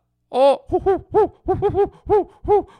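Snowy owls hoot in a quick, close series of about eight loud, rounded calls, the first one longer and higher, with no talking underneath.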